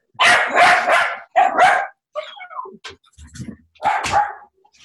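A dog barks loudly at home during a work-from-home call, three sharp bursts with a pause, plus some softer scuffling and whimpering noises in between, no talking.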